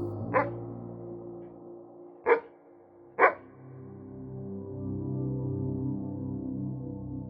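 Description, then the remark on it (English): A dog barks three times in sharp, separate bursts, the last two close together, over a steady low droning background. The barks are moderately loud. “Sometimes the dog barks.”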